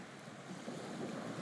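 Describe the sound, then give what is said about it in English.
A ferry's engines give a steady, low rumble, slowing as the boat comes in to port, mixed with rushing water and gusts of wind across the microphone. No one is speaking. “The ferry engines slow because it is coming in to port.”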